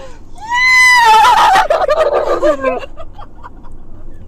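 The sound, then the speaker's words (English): A person imitates a horse's whinny, a loud, high-pitched wavering call with a quavering tremble that slides downward over about two seconds, followed by faint breathy sounds. “This is my impression of a horse.”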